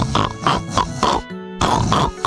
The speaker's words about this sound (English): But after they had fallen asleep, Big Whale began to snore.